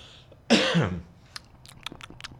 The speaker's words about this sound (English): I had a cough.